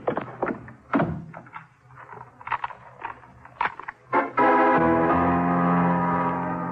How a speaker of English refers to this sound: When I heard the front door slam, I started kicking my way out.